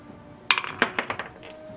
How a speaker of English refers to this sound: So would the two of you roll 1 dice to determine who will go first among you at 16. Mm-hmm. And this will be set once it happens. Just a flat 1 die.